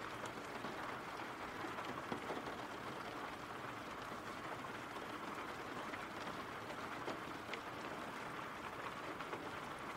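Steady, dense rainfall patters down continuously, a broad hiss with faint scattered drops, unchanging in intensity throughout with no voices.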